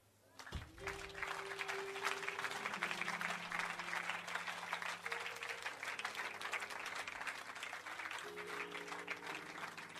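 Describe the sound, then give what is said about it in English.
A church audience claps continuously for about ten seconds at the end of a sermon, a dense, steady wash of many hands, loud, with sustained low musical tones humming underneath. “Keep on clapping.”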